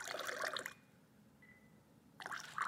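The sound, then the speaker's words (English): Cold tap water, in the New York City area, is slowly dribbled into a glass, trickling and splashing in two short bursts with a quiet pause between, fairly clear, with a faint thin tone ringing in the gap. “While New York City gets its water from here in this area and from our reservoirs, and it's really good, so we're just going to slowly dribble water into the glass.”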